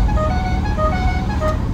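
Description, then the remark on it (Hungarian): The two factory horns of a V8 car sound their factory melody, loud, the sustained brassy notes shifting pitch several times over a steady low engine rumble. “Tehát, hogy mint autó, meg mint tárgy, meg mint formaterv, meg hogy V8-as, meg a kis apró gegek, ahogy nyílik az elefántfül ablak, meg a két duda, a gyári dallam kül.”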